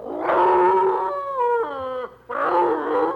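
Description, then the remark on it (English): A human voice mimics a hound's baying howl, loud and sustained with wavering, sliding pitch, breaking briefly near the end before one more drawn-out howl. “Our old postmaster had an old fox town called Lane. League wakes up, comes out from under the porch.”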